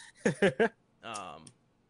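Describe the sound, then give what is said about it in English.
A voice imitates keyboard clacking: three quick, punchy clack sounds in a row, then a longer drawn-out vocal noise, all fairly loud. “Your clacking skills are really good. I know. See, the trick is he's not actually even saying the sounds. He's literally just using his keyboard.”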